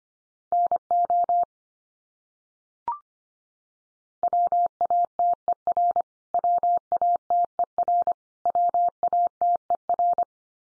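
Morse code sent at 25 words per minute in a steady mid-pitched tone, keyed into rapid dots and dashes spelling common English words. It comes in several bursts separated by short gaps, with one brief click early on and no voices.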